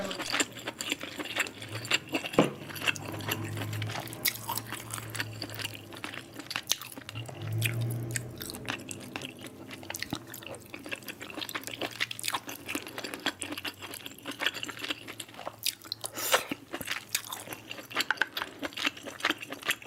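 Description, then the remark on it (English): Wet ASMR mouth noises with steady chewing and crunchy bites, dense little clicks and smacks running continuously for the whole stretch with no talking. “Shit, you want to like be sucking and succulent and swallowing and.”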